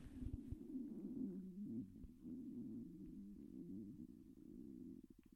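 A stomach rumbling in a long, low gurgle that bubbles and shifts in pitch for several seconds, ending in a few quick clicks. It is quiet, with no talking.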